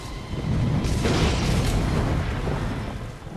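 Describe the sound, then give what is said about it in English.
A film lightning strike from a scene in which Storm, played by Halle Berry, attacks the evil mutant Toad: a loud, crackling, rumbling blast with heavy low-end boom, sustained for about three seconds before slowly tapering off, with no voices present. “So what does happen to a toad when it's struck by lightning?”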